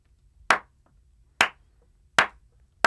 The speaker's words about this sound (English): The slow you know what? Clap? I'm doing a slow clap by myself. Why are you doing a slow clap at all?